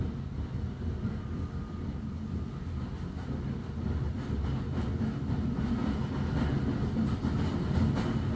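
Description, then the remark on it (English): A steam train rolls steadily along the tracks, a dense low rumble with faint, rhythmic clacking of wheels running through it, constant, with no voices. “Maybe the rhythms of the train over the tracks.”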